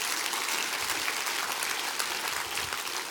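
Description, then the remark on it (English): An audience claps their hands together at the preacher's call before his sermon, a steady, dense wash of applause, many hands sounding at once evenly for a few seconds with no voices standing out. “Clap your hands and let me preach to you now.”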